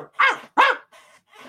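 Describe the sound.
A voice imitates a dog barking: two loud, gruff barks in quick succession, followed by a couple of quieter, breathy growl-like trailing sounds, with no other talk.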